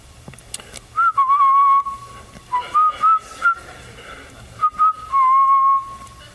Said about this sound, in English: Yep, that's a good time for a phone call. Someone's cell phone going off right now. I'll let you answer it.